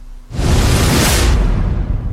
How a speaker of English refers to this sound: That was a good swoosh. We couldn't get a better swoosh than that. Thanks to the technical department here at Bro Radio.